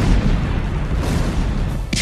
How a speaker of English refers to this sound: And the base started taking heavy incoming. And all of a sudden, this huge explosion.